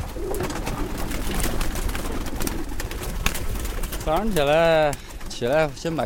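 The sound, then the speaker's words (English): Pigeons in a small cage on the tin roof of a brick home coo in low, warbling bursts in the morning, first under a rough rustling bed of noise and then more clearly in two longer calls near the end. “When I wake up every morning, the first thing I do is release my pigeons.”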